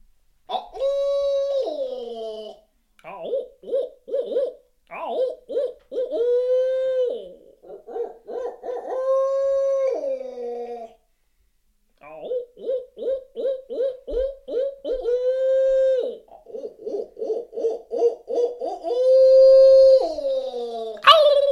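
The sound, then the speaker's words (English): Human voices imitate owl hoots in a lively exchange, answering one another with long wavering calls alternating with quick rhythmic hooting bursts, loud, with brief pauses between phrases. “So, you know, we will answer one another in certain occasions from an owl situation.”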